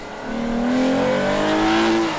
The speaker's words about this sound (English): A rear-wheel drive GS can hit 60 miles an hour from a standstill in just 5.7 seconds. Naturally, the all-wheel drive version is a few ticks slower. The engine is as smooth as a V6 can be, yet it really snarls as the revs climb.